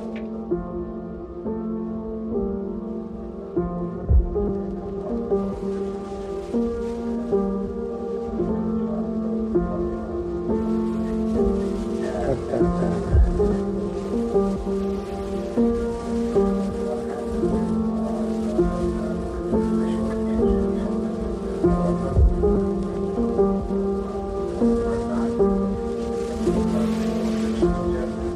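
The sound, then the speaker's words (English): Ambient tape loop music: layered, sustained tonal drones hold steady over a constant hissy, rain-like texture, with occasional low thumps and a slow repeating feel. There is no talking. “He does stuff with tape loops.”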